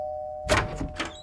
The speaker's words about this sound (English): Here's the fire hydrant, and oh, there's the yellow house. Time to put on the charm offensive. Just have to ring the doorbell and...